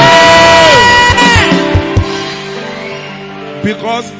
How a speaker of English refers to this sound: I told you that when you are clapping for Jesus, you are the shout. You are adding a shout. You are adding a shout. You are adding a shout.